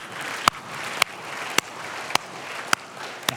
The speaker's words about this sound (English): We raised $28,000. Yeah, let's clap for that. That's awesome.